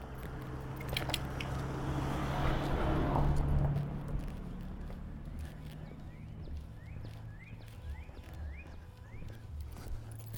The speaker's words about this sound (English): There's an Amazon truck ready to kill us.